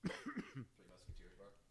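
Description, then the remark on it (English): A quick run of muffled, throaty coughs with the microphone switched off, sounding subdued, followed by a faint murmur of voice and room noise. “I turned my mic off while I was coughing.”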